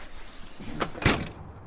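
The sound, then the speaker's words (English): A front door swings shut with a soft latch click followed by a single solid thud, with no voices, the sound fading quickly. “The front door closes behind me,”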